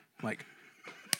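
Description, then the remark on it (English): A single sharp hand slap on an arm lands near the end, crisp, following a brief stretch of a person's voice. “I mean, listen, she is dead asleep and she wakes up and slaps the crud out of me because I'm laughing.”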